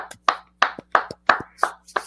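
Steady hand clapping, about six or seven sharp claps in an even rhythm at roughly three per second, fairly loud with nobody talking.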